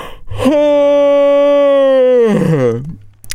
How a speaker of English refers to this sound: Yeah, I'm yawning because I'm so tired. It's been a long, long weekend.